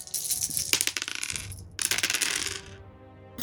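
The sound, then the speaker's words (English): A handful of seven dice, rolled for damage, clatter and tumble across a hard surface in two quick, busy bursts, fairly loud, with no voices over the rattling. “7 dice for damage.”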